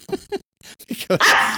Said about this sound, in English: Are you being attacked by a dog or something? Yes, I am.